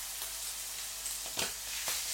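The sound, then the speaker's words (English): Chicken livers fry in a hot pan of about 30 grams of butter, a steady hiss with a few sharper spits and crackles rising out of it, no voices. “As soon as it stops sizzling, there we go, it stops sizzling, in go the livers.”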